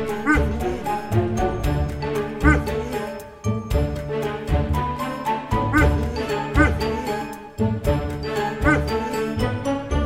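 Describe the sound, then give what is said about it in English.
A dog whines and yips repeatedly for food, fairly loud, in insistent bursts over a steady backdrop with faint jingling, and no one talks. “He's figured out that if he comes and makes a noise, that he will get, I will give him food”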